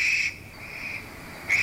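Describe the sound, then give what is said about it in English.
A harsh, hissing screech from a young barn owl begging for food, a drawn-out wheezy rasp that fades briefly and then swells again near the end, fairly loud with no other sounds. “Young barn owls beg for food throughout the night, starting at dusk.”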